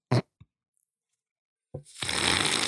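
A sharp tap and a softer knock, a moment of silence, then a crisp fluttering rush of playing cards being riffle-shuffled during a game of blackjack, with no one speaking.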